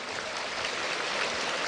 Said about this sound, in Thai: ครับก็เสียงปรบมือดังๆเลยครับผม